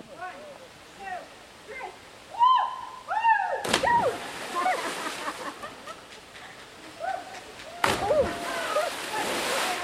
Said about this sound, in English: And since the baboons are out, our group settles on the ledge, overlooking a giant pool. But it doesn't take a lot of urging to get a couple of the more adventurous folks to jump into the water below.